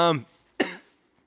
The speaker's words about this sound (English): Thanks for just steamrolling over me coughing.